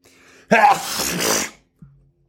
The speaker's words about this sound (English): Oh. Oh, that felt good. God, sneezes are, if you stop yourself from sneezing, I will pray for you. I pray for you right now. Please let your sneeze out. Please be free. I'm in a room by myself, so I didn't even cover my nose.